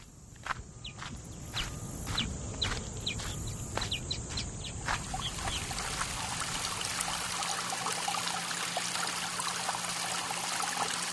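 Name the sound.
babbling brook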